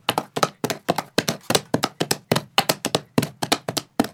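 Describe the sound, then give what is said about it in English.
Foley hoofbeats of a trotting horse, made by a Foley artist wearing two hoof gloves at a dirt pit: crisp, hollow clops repeating in a steady, lilting rhythm of quick paired beats, loud and alone, with no voices. “And then there's also that there's like a trotting horse, which is like...”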